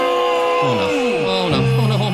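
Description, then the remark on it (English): An upset concert crowd of many voices shouts and jeers at once, loud, with overlapping yells rising and falling throughout without a break. “The crowd is upset.”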